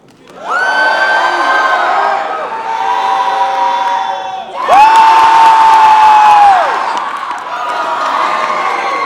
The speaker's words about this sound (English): You're going to cheer the loudest for the person that you think did the best. And here we go.